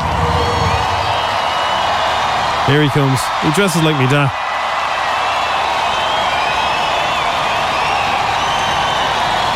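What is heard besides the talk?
festival crowd cheering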